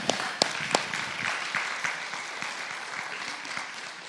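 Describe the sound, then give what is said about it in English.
An audience at a church service applauds steadily, a dense wash of many hands clapping at once with a few sharper claps standing out near the start, holding a moderate, even level throughout. “So, yeah, you can clap.”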